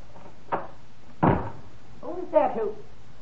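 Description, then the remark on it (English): A light click, then a solid thud as an office door to the emergency stairs swings shut behind a person leaving through the fire exit, followed moments later by a brief murmur of voices. “Oh, quickly, out that door, down the emergency stairs.”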